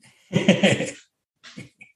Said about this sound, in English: I think that's my dog barking. No, it's mine.